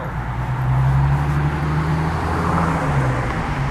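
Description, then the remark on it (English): Steady low rumble of road noise from inside a moving Toyota sports car, a continuous engine-and-tire drone with a faint whooshing hiss above it, constant in level throughout with no talking. “are you in the car, bro?”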